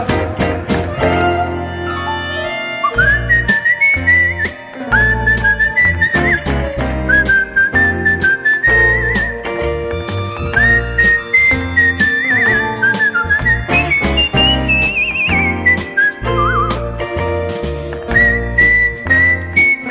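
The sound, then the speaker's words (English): A person whistles a bright melody that rises and falls over a full, steady musical backing with a driving beat, loud throughout with no one talking. “keep whistling”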